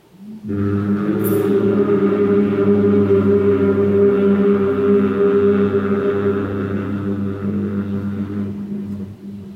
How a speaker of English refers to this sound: Next time you're breathing out, hum as you return back to the center.